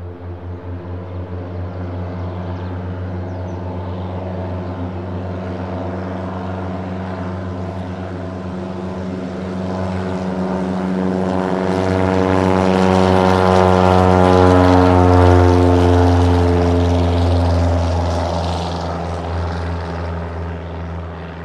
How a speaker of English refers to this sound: Was actually a Cessna. Most of the planes we're recording today are beavers, but that one was a Cessna. It's a float plane, so it just took off of a lake. It just went right down the lake in front of us and took off into the air.